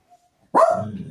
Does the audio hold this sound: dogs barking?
yes